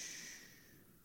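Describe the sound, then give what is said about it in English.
A soft, breathy rush of air as many people in an audience exhale together after being told to take a deep breath, fading gradually over about a second with no voices over it. “Just take a deep breath. Okay, exhale.”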